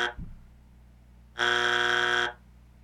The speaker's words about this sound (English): Call it a boring buzzer.